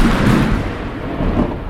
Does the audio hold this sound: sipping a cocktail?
no